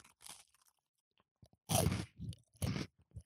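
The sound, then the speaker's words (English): Loud crunching as someone bites into a BN chocolate biscuit with thinly spread chocolate: two sharp, heavy crunches with softer chewing crackles between and around them, and no talking. “Very crunchy, actually.”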